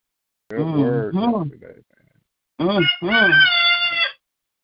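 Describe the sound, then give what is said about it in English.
A woman imitates a rooster crow with two loud, warbling vocal bursts, a short rising one followed by a longer, drawn-out high call that holds its pitch before cutting off. “She sound like a rooster just then.”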